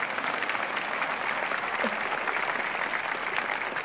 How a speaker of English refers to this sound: You know, first of all, I got to share this applause with them children. Didn't they really sing that piece? Now give it to them.